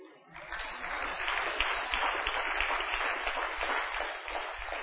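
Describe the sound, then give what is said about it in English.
A crowd breaks into applause that swells within half a second and holds steady, a dense, even wash of many hands clapping at moderate volume with no voices standing out. “Don't clap too much.”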